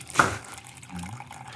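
A foamy cocktail, shaken vigorously with ice for 20 seconds, pours from a shaker into a glass: a sharp splash at the start, then a softer, steady gurgling trickle, with no one talking.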